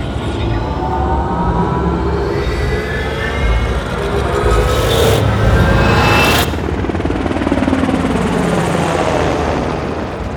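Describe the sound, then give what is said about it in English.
A helicopter flying over jungle terrain thick with huge green trees in Peru, South America, roars steadily, its rotor chop and engine whine filling the scene with dense, loud mechanical noise that swells briefly in the middle before continuing. “We're in a helicopter. We're flying over jungle terrain, thick with huge green trees.”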